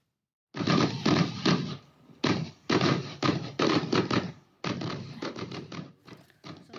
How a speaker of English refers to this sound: So those were some Upper J fireworks after the parade. They had fireworks going. That was pretty good for a small town. A little fireworks show.